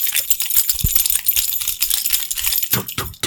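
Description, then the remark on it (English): Footsteps with a gritty, crunching texture and a few heavier thuds scattered through, fairly loud and continuous, with no voices over them. “Those are his footsteps.”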